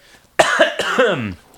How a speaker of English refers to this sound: As he coughs.